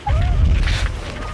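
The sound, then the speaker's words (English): A deep, steady rumble like far-off thunder rolls on throughout, with a faint, thin whistling tone sliding above it near the start. It is the rumble of the Western Front of World War I in occupied France, at the opening of the film All Quiet on the Western Front. “The forest above slowly wakes, and a gentle rumble signals a coming storm.”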